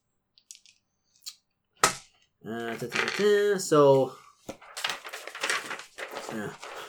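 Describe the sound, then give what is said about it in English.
A few light clicks and a sharper knock of a six-sided die (d6) being rolled and landing on a table to set skill, stamina and luck scores for a solo adventure book, followed by people talking and another brief clatter. “Roll one dice, d6, and add 6 to it.”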